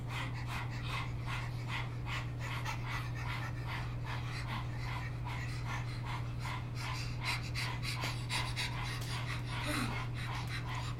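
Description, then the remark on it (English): People rapidly pant with their tongues out in imitation of a dog, as a 15-second breathing exercise, a steady, quick rhythm of short breathy huffs sustained throughout, fairly loud over a constant low hum. “How does a dog breathe? It sticks out its tongue and it goes. So let's do a dog breath.”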